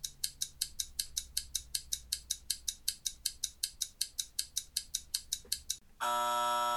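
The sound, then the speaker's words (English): A fast, steady ticking like a countdown clock, about four crisp ticks per second, runs for six seconds before a loud, sustained buzzer-like tone abruptly takes over. No one speaks. “Time's ticking.”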